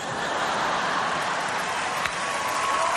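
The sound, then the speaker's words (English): A crowd applauding, with dense, steady clapping that keeps an even level for the full few seconds. No voices stand out above it. “There's an applause line. See, everybody raise their hands.”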